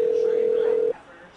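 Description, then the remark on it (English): A phone placing a call to the Tomos Club of America: a steady, clear telephone tone holds for almost a second, then cuts off abruptly, leaving a faint hiss of background noise. “We're going to give them a buzz.”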